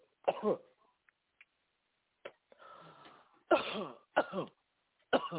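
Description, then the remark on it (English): Several harsh coughs spaced irregularly, with a raspy throat-clearing stretch between them, fairly loud and with no talking, from people coughing during a deliverance prayer. “And the rest of you that have got it, you need to be coughing too.”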